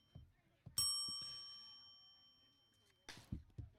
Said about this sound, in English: Two blown fair foul attempts. There's a bell for that.